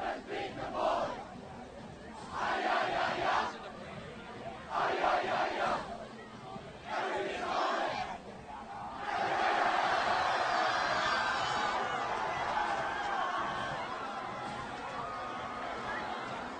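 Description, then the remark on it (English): A football team celebrates a win after the game, chanting together in four loud rhythmic bursts before breaking into a long, sustained roar of cheering and shouting voices. “Well, we'll keep the mic up. Let's hear it.”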